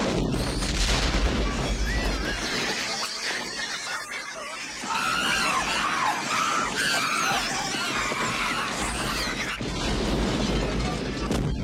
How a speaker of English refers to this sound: And, like, he literally lights a rag fuse and prays to God that they'll have time to get out before the whole place blows like Krakatoa. And it does. The explosion is impressive from a pyrotechnic standpoint.